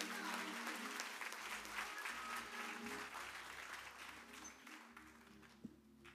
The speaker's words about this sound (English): Let's give the Lord a hand clap of praise for these young people.